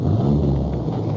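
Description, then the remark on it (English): A deep, steady engine rumble from the arriving truck of a Culligan water-conditioner man, fairly loud, holding an even drone for about a second with no voices. “There's his truck now.”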